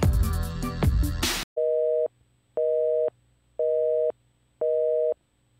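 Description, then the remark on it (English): After a brief burst of loud, dense sound, a telephone busy signal beeps four times in a steady on-off rhythm, each tone clear and even against near silence, with no voices. “It pains me to tell you your call didn't go through.”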